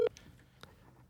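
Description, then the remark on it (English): A short electronic phone tone blips once at the very start as a call is placed to someone's mother, then fades into a quiet line hiss with a few faint clicks. “It's ringing.”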